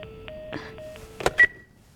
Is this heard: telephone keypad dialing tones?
yes